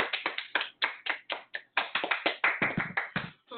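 Three people clap their hands in a quick, steady burst of sharp claps lasting a few seconds, with no talking over it.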